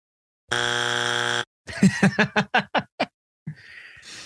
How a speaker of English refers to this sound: I'm gonna need you to hit that buzzer.